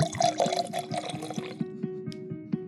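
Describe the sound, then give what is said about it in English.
Whiskey is poured into a glass, starting with a steady splashy stream, then breaking into a few distinct glugs and clinks as the pitch rises and the glass fills. No one speaks. “And wow, it sounds like someone just poured a glass of Jack Daniels.”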